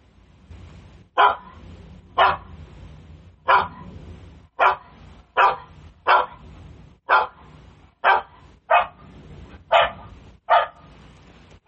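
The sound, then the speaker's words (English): A guard dog barking sound played by an Alexa skill through a smart speaker: a dog barks loudly and steadily, about a dozen sharp single barks spaced roughly a second apart, prominent with no talking over them. “So you can see how it sounds, and it's as loud as your speaker will allow it to be. So it has different dog types too.”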